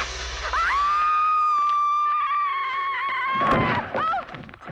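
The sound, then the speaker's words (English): A horror movie scream from the film Halloween, with Jamie Lee Curtis: one loud, high, sustained shriek holding a steady pitch for about three seconds, then breaking off into rough, noisy thumps and a shorter cry at the end. “Was that an internet sound or was that a movie? I'm going to say movie.”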